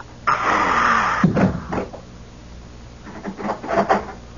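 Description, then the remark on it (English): A door swings open with a broad creaking scrape lasting about a second, followed by a few knocking thumps, then quieter shuffling and a couple of soft bumps. “Come in, close the door.”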